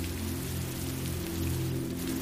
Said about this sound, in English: A-frame ceilings peak 12 feet overhead, and the rain trickles down skylight windows above the bed and sitting area.